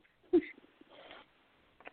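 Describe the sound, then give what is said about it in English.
A woman sniffs a few times, short breathy intakes spread across a quiet moment, with a brief soft vocal catch at the start. No one speaks. “She is still sniffing.”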